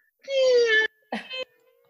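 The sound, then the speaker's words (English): A voice mimics the squeaky-gate sound effect used in TV shows: a drawn-out, slightly wavering nasal creak lasting over half a second, then a shorter, choppier squeak after a brief pause. No other talking. “There is a sound effect in every single one of these shows. The squeaky gate.”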